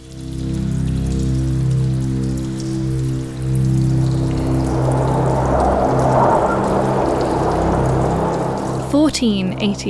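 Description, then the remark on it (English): Heavy, stormy rain pours steadily on a dark night in North Yorkshire, driven horizontally by howling wind, a dense hiss that swells midway, over a low sustained droning tone, ending with a few sharper splashes. “It's a dark and stormy night in North Yorkshire. The wind is howling and rain drives horizontally across the landscape.”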